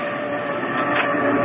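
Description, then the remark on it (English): A heavy oak door with iron bands grinds open, operated by an electrical switch: a steady, loud mechanical rumble with a constant whining hum running through it and no voices. “Now, this door, made of oak, with iron bands, opens by this electrical switch.”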